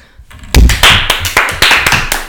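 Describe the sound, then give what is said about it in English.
Hands clap in a quick, steady rhythm, about eight sharp claps in a row after a brief quiet start, fairly loud with no talking over them. “I don't think they're gonna like us clapping.”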